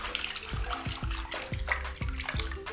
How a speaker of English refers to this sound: Can you hear that? The water is fizzing, bro. Weird.